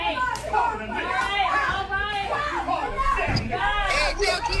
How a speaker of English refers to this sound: Hold on. Those are slaps you're hearing.